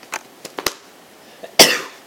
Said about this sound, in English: That was one sneeze. That was two. I think three might be coming.